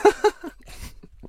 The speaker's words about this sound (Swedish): Jag måste ta en klunk av Jonas Gardell vattnet här